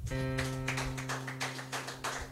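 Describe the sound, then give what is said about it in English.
A church audience claps in praise to the Lord after a sermon, in a steady, fairly rhythmic beat, the bursts of clapping ringing out over a sustained, held organ chord, with no one speaking. “Somebody give the Lord a mighty clap of praise.”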